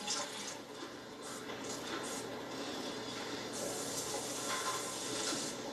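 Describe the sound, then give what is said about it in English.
A steady stream of thick, heated liquid latex pours into molds with a continuous hissing, splashing wash that swells slightly in the middle and holds without pause for several seconds, with no voices. “Go and watch them pour plastic into molds.”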